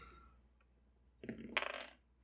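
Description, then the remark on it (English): A short, rattling clatter of dice tumbling and knocking together as they are rolled, landing on an 11, lasting under a second, with no one speaking. “Well, that's an 11 on the dice, so we're at a 14.”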